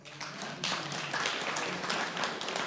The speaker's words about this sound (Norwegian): Det som er gledelig, det er at Sion Manse arrangerer disse teltmøtene sammen med Visjon Norge, og det kan vi klappe for.